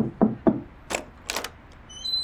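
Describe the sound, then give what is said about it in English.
Two dull, resonant, evenly spaced knocks on a wooden door, followed by a couple of brighter scraping or rattling noises and faint high tones. “Alright, let's knock.”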